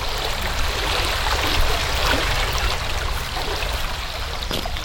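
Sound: flowing stream water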